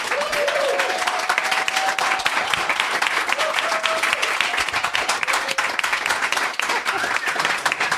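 Dense, steady audience applause welcoming Swampy Marsh and Dan Povenmire, creators of Phineas and Ferb, fills the whole stretch, a continuous loud wash of many hands clapping, with a few faint whistles rising above it now and then.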